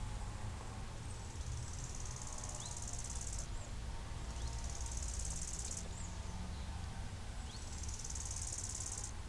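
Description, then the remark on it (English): A dense, steady buzzing of many bees fills the air, with a constant low hum and periodic high-pitched surges, no voices present. “A cathedral of bees.”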